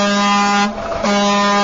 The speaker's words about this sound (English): The honking will continue until freedom improves.